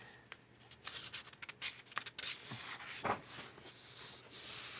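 Soft scraping and brushing of a hand moving over textured paper, with scattered short strokes and a steadier hiss of rubbing toward the end, no voices.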